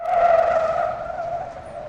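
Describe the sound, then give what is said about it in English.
A sustained, high-pitched squeal of the tires of a Peugeot car called Penny Peugeot skidding on pavement as it races to the other side of a river, loud and steady for about two seconds with harsh overtones and a slight wavering in pitch, fading a little toward the end. “We were screeching to the other side of the river.”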